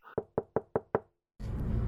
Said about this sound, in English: Let's go knock on his door.